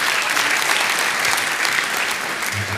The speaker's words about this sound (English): I love the fact there's a round of applause for showing a picture of an awkward teenage boy, but there you go.